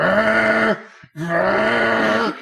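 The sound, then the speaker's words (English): A voice imitates the noise of an old Ubuntu machine used as a recording rig as it dies in the middle of the night: two loud, drawn-out, buzzing groans with a short break between them, each sagging lower in pitch as it ends. “I've had my second recording rig up and die on us. It was the middle of the night, the old Ubuntu machine.”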